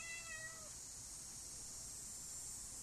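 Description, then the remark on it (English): A single short meow from a cat that wants to be let out, at the very start, fairly clear, followed by steady background hiss with no other sounds and no talking. “At least I should rank higher than furry-faced cat.”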